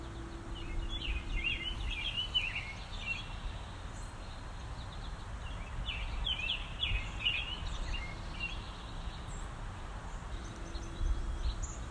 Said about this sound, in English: The bird song is really quite striking this morning.